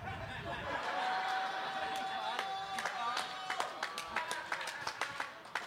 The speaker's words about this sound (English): One more round of applause for my opponent,